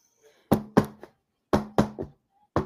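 Knocking on a door in two quick triple-rap groups, followed by one more single knock; the hits are sharp and hollow, with no talking.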